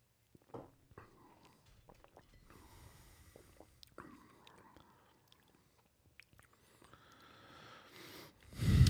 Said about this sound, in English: Oh, that was fun. That first sip, just I think I tasted it about three separate times. Mm-hmm. It's nice. Oh yeah, that's nice.